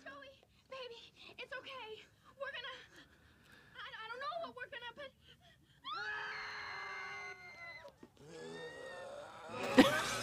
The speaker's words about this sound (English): A lot of screaming for you. A lot of screaming. Together, all three. Right, exactly. It's harmonizing.